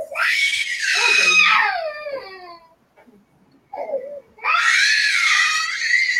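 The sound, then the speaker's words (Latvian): A small child cries and screams loudly, two long wailing bursts with harmonic, strained pitch, separated by a brief gap with a small whimper. “Tā kā mazi bērni, tad tā ir, tas ir normāli, tas ir normāli, tas ir normāli.”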